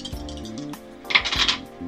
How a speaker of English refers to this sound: Alright, so roll two dice.